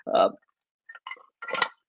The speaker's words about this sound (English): So far, let me drink some water.